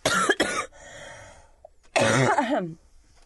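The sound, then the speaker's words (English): A person coughs twice: a sharp, harsh burst, a brief pause, then a second, rougher cough with a raspy voiced tail. No talking. “for my own self-preservation, cough.”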